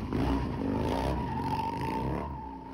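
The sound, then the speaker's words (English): Nick Hogan drifts a car with its engine revving hard, a loud, steady roar of harmonics and a high tire squeal running through the whole stretch without any talking. “Drifting on that bitch.”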